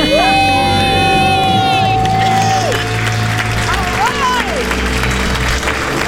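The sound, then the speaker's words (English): Several voices let out a long, loud celebratory scream with rising and falling pitch after paying off their debt, while a crowd applauds and cheers steadily throughout, energetic for the whole stretch. “Let's hear your debt-free scream.”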